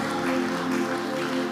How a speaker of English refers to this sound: Somebody celebrate God with a good clap offering.